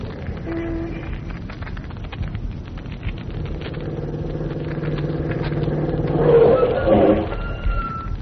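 A car engine starts up and settles into a steady droning hum, then revs louder as the car pulls away to drive to Quarry Road, over a constant low rumble of background noise.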